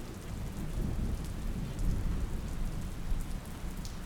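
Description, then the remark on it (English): Heavy, steady rain pours down with a dense hiss, while low rumbles of thunder roll beneath it throughout; no voices are heard. “And the rain, although it is heavy, is cleansing and calming.”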